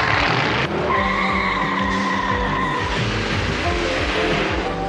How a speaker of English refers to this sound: So they all jump in their vehicles and burn rubber. I like the ramped up sound, so to speak, of Thunderhawk.